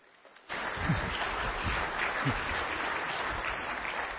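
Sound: audience applause welcoming speaker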